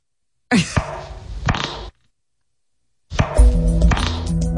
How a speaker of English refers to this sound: Sounds like ping pong. Yeah. I'm going to say that's …. Oh, of course. Who? He doesn't even sound human. He doesn't even fart right.